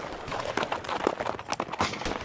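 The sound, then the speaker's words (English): Rapid, irregular thudding hoofbeats of a horse carrying two riders galloping off into the darkness as bullets whiz through the air around them, dense and continuous over a rough, noisy background, moderately loud. “My brother threw my limp body on the back of his horse, and we sped off into the darkness.”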